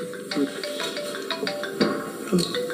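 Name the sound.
mobile phone ringtone ringing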